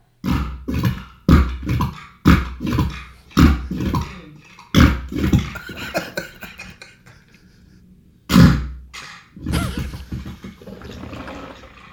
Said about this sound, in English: May I interrupt you at that point and play this recent recording of farts from my house?